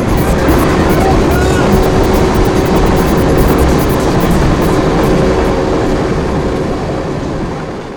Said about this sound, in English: The train's heading south.